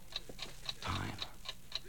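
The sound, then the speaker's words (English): A clock ticks rapidly and evenly, roughly four crisp ticks per second, fairly quiet, with a brief muffled rustle partway through. “No clock has ever gone this fast.”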